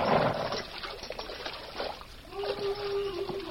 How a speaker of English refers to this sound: Well, we're in luck. There's water here. It's running water, too. Good and cold.